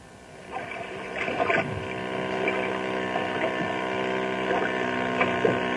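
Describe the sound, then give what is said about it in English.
Speedboats race across Beaver Lake, a crystal-clear lake surrounded by mountain ranges, their engines droning steadily with whining pitch sweeps as the boats pass by. The sound is loud and continuous, with no voices. “Water hot rods.”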